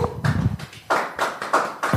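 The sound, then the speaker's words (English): A short run of sharp hand claps, about six or seven in a steady rhythm, bright, with a brief low murmur just before the clapping picks up, at the close of the Matt Brown Show. “Clap it up.”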